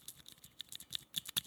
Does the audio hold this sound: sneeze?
no